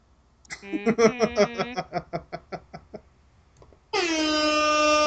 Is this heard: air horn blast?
yes